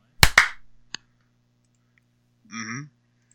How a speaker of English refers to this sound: Yeah, I clapped. There you go. I literally didn't hear it, so okay, well, I need one more.